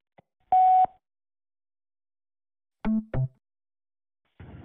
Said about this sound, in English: Sorry to have missed your call. Please leave a message after the tone. We'll get back to you as soon as possible.